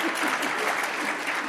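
Steady, dense clapping from a crowd sustains a bright, even wash of applause throughout, with no voices standing out.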